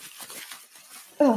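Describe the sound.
Tissue paper rustles and crinkles inside a purple gift bag as it is opened, in soft, irregular bursts for about a second, then a brief, louder voiced sound cuts in at the end.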